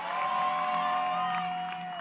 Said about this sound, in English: Oh, that's a good time to clap for Jesus. That's a good time to shout amen.